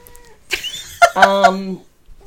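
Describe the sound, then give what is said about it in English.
A male cat lets out a drawn-out, nasal meow, preceded by a shorter squeaky call, with quiet room sound before and after. “Oh, he's come to meow at us.”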